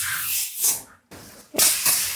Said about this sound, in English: Lightly grease with cooking spray. Lightly grease with cooking spray.